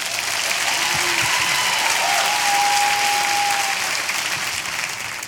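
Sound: audience clapping hands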